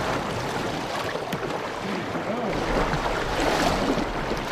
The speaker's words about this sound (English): We caught up with the former vice president in one of his favorite spots, drifting down the South Fork of the Snake River in Idaho.